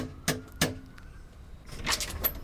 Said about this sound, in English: And we have actually come to someone's house this month. So we're just going to knock on the door and hopefully they'll let us in.